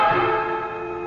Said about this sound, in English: When I wasn't listening to this ludicrous old lady chiming the bells in praise of Winona,